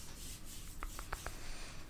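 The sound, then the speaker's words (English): A few soft, quick keyboard taps as someone types a chat message, about four keystrokes in an irregular burst, over a faint steady background hiss with no one talking. “Let me try typing him a message.”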